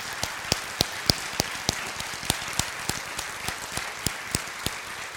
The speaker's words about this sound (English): We're going to clap for you. We really appreciate you.